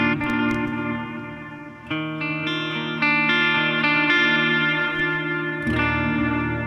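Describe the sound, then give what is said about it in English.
Electric guitar chords ring out through a Screamer and a Halo pedal plus the delay side of a Caverns pedal, each strum blooming into sustained, echoing repeats with a washy, ambient tail. The playing is steady and full, changing chords every second or so, with no talking. “Check out when we add the Halo. Plus the Caverns, delay side.”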